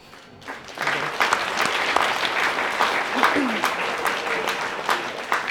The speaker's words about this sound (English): I'd like to thank the parents and supporters for coming out here today. unreal to see so many faces at a match. And yeah, you really helped us out in the pitch today when the legs got tired, so big clap for you as well.